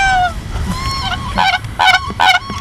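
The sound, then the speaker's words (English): A Siberian crane calls several times: clear, high, whistling honks, with the last few bursts louder and harsher, with no one talking. “It's trying not to scare a Siberian crane.”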